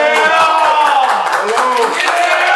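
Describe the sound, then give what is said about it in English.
A crowd, told to start clapping, claps steadily amid loud, sustained cheering and voices. The noise stays dense and constant throughout, with no pause in the clapping. “Everybody start clapping right now.”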